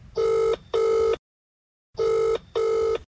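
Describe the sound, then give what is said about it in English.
Ronan O'Gara's telephone rings in two double bursts before going to voicemail, each pair of loud electronic trills separated by a short silence, clear with no voices. “Roger's phone has been busy with well-wishers and calls of another nature. We got exclusive access to Roger's voicemails.”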